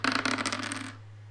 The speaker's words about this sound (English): So I need you to roll me your willpower. This will be 4 dice, just like it was before. No penalty.